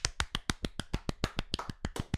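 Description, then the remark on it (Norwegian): A short burst of applause: roughly fourteen sharp, evenly spaced hand claps in a quick, steady rhythm, fairly quiet, with no talking over them. “Ja, det var dritfett. Applaus.”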